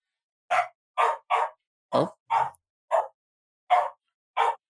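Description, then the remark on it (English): A dog barks eight times in short, sharp bursts with uneven gaps between them, loud, with no talking in between. “Hey, dog, what's up? I don't know what they're yelling about.”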